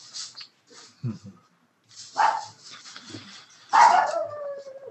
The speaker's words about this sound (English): Dog in stereo.